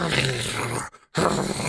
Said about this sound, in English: Release an arrow. It lands into the dog's neck. It barks.